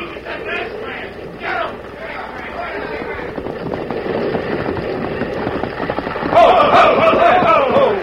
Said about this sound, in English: they've got to see this bridge collapse before they believe my story. I hope the weight of one man and horse is enough to do it.